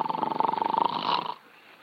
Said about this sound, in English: must you start snoring as soon as you close your eyes? Snoring? Who's snoring? I'm not snoring. It's that darn kid, that's who it is.